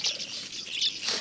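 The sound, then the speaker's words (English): Bright, high-pitched bird chirps repeat in quick bursts, steady, with a faint rustle beneath and no voices. “Don't these birds look like candy, you know? Like flying candy.”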